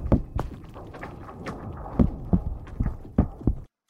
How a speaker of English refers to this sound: Ice cracking. You got it!